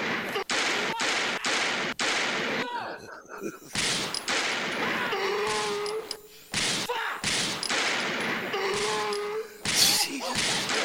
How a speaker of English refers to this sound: Yeah, the repetitive gunshots. That's fucking great.